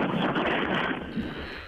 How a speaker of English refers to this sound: Jesus, I've just turned on the hairdryer. God, that was very low. It was very low hairdryer.